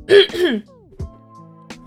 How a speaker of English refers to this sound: And yeah, oh my goodness, I'm coughing again.